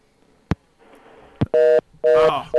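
Two sharp clicks on the call-in phone line of the Moto Show, then a loud, steady electronic dial tone sounding in three short bursts with brief gaps between them.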